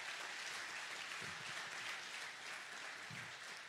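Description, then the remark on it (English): An audience at a church service claps steadily for several seconds to welcome Pastor Craig, a dense, even wash of many hands with no pauses and a few low murmurs or cheers rising briefly under the clapping. “Can I ask, with a hand of applause, we just welcome Pastor Craig.”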